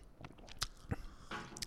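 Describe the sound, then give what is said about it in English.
Someone takes a small sip of a tropical banana-flavored drink, making a few soft, wet mouth sounds and brief slurps with no talking. “Yeah, I'm gonna take a little sip again. A little taste of it.”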